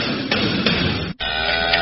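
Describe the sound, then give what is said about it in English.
A cow moos loudly, a long droning bellow split by a brief pause, with a rough, noisy edge over a steady harmonic tone. “That might be the best cow ever.”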